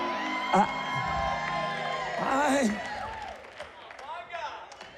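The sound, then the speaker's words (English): An audience erupts in loud shouting and whooping, several voices overlapping in rising and falling cries that swell and then fade, with a crowd-like hubbub underneath. “I thought this sanctified bunch over here shouted at that.”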